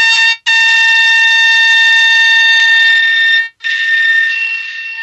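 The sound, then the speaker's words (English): A steady, piercing electronic tone with stacked harmonics, like a continuous buzzer alarm, loud, broken by two brief gaps into three long stretches: the electric signal of a black ghost knifefish converted into sound. No voices. “As for the black ghost, the sound is much more, I'd say it's not very pleasing on the long term, but here it goes.”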